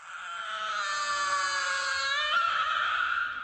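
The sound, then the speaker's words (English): A robot baby, turned back on and trembling, gives a loud, shrill screeching wail like a baby's cry, held steadily for several seconds with a slight shift in pitch near the end and no talking over it. “Instead, she scooped up little brother and turned him on again. He trembled and screeched louder than ever.”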